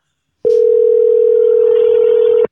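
A steady, loud telephone dial tone of an outgoing call holds one unbroken pitch for about two seconds, starting and stopping abruptly, with no voices over it.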